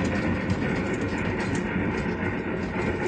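A train rolls steadily along the track approaching Dale Creek Bridge, a loud, continuous rumble with dense low clatter and a hissing upper layer that holds level for about three seconds. No one speaks.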